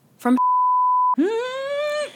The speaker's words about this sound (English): Bleep it right now.